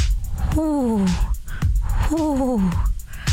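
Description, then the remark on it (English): A person's voice imitates pigeon cooing: two throaty, wavering coos that slide downward in pitch, each about half a second long and separated by a short pause, fairly loud. “Pigeons.”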